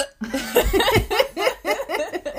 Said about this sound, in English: hiccups. Hold your breath.